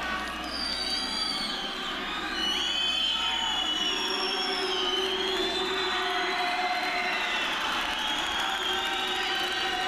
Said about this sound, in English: So we go from that to the crowd cheering to now this haunting kind of wind noise, this howling wind.